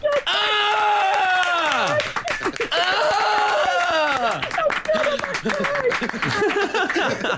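Steady clapping from a group runs throughout, loud and dense, mixed with high, gliding whoops and cheers that rise and fall over the applause.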